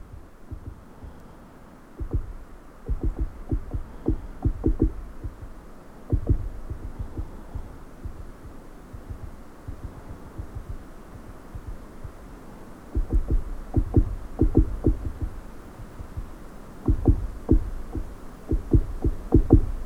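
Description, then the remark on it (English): A woodpecker drums right at the top of a hollow, resonant dead tree in several rapid rolls of deep, resonant knocks separated by short pauses, with a low steady hum beneath and no voices. “It's a dead tree, so it was really hollow, resonant, and the woodpecker was right at the top.”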